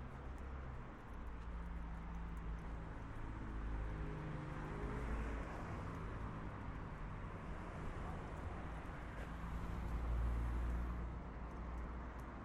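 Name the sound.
school bus driving past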